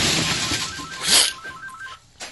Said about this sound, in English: Can you imagine that guy was like, God damn it, my phone's ringing right now.